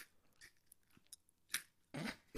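Crunchy pretzels being bitten and chewed right up against the mic, with a few sharp crackling crunches at irregular moments and quiet pauses between them, ending in a louder, close crunch.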